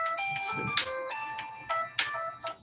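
A mobile phone ringtone plays a bright, synthesized melody of stacked electronic tones, with sharp percussive accents punctuating the tune at a steady pace, with no one talking.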